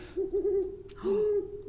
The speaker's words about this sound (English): so I was like waiting for sound effect. There's the owl. There he is.